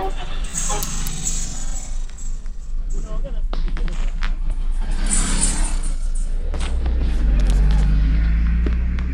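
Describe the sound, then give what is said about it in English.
Busy roadside ambience at a traffic stop in Kisii, Kenya, with steady vehicle noise and a deep engine rumble that swells near the end, scattered knocks and clatters, and indistinct voices murmuring in the background. “Right now we're at a traffic stop in Kisii, Kenya.”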